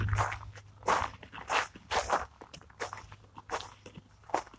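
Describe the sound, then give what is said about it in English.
Crunching footsteps walk steadily outdoors toward a bench, roughly two steps a second, each a short gritty scuff with a slightly uneven rhythm, over a faint low hum and no talking. “I'll move over here so it's not so loud.”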